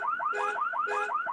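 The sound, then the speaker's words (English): A car alarm on a newer car wails in a fast, repeating rising chirp as someone tries to get into the car. It is loud and steady throughout, with periodic bursts of a harsher buzzing tone layered on top. No one speaks. “Well, most of them I can get in without the alarm going off. This one's a little different.”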